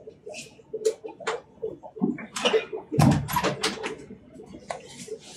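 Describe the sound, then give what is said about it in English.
A door is pushed shut with a solid thump partway through, surrounded by scattered clicks, shuffling and faint clinking of china from people doing dishes upstairs, with a low murmur underneath. “Hang on, I'm going to shut the door because there's some folks doing dishes upstairs and it's tinkling china.”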